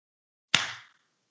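single hand clap

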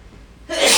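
sneeze

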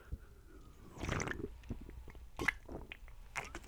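sipping an energy drink

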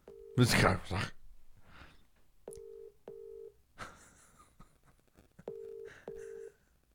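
phone call ringing out

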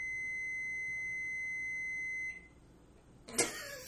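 microwave oven beeping

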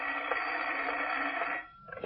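telephone ringing

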